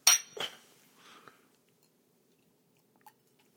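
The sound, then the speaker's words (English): Glasses of Balvenie 21-year Portwood whisky clink together in a toast, a bright ringing chime, followed by a second softer knock and faint handling noises, then quiet with one small tap near the end. “Cheers. Yeah, cheers. Salud.”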